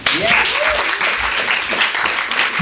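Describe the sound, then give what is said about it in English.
A crowd at a Rattling Wall reading at Skylight Books in Los Angeles breaks into steady applause. Dense, overlapping claps form a loud, continuous wash of noise, with a faint voice or cheer rising briefly at the start. “So let's begin our warm-up of claps with more clapping.”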